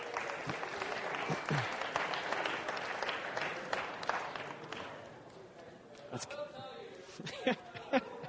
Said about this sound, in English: All right, everybody applaud that table. They win.